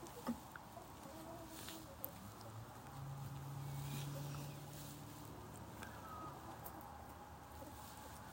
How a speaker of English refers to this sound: I'm just watching the chickens now as they get ready for bed.